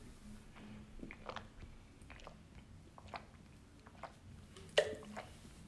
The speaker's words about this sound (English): So here I go. I'm taking a sip of water. And you should do the same. Hydrate. Hydrate as often as you can, as often as you remember. Try to discipline yourself. So as if you could excuse me, let me just take some sips.